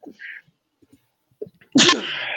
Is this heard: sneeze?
yes